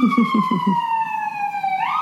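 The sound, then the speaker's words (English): A loud emergency vehicle siren wails steadily, its tone sliding slowly downward as it passes along the street, then sweeping back up at the end, with a low rumbling pulse underneath. “Sirens, everybody sirens.”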